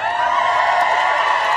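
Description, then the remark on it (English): An audience breaks into loud, sustained applause with some cheering mixed in, a dense, steady wash of clapping that holds at an even level throughout with no talking over it. “Actually, let's give you a better applause than that.”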